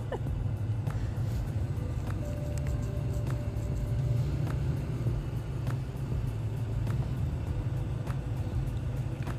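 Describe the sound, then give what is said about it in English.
A car engine starts and rumbles steadily in the parking lot of a bar, with low, continuous noise, while people talk faintly in the background and occasional clicks punctuate the scene. “As we listen to all the sounds of the parking lot at the bar, with a car starting, people in the background talking.”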